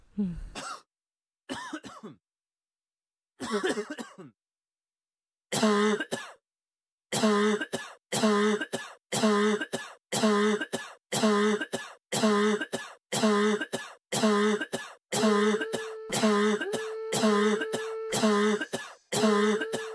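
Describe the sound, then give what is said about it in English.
Coughs and throat-clearing bursts start out sparse and irregular, then are edited into a steady, evenly spaced loop of loud coughs repeating like a beat, with no talking. “But I made another one just with the sound of coughs, which we will play for you now.”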